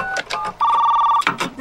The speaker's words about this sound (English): Remember that modem he was using? It was like the size of this whole desk. Yes, the modem had sound. Plug the phone onto it, like set the earpiece on it.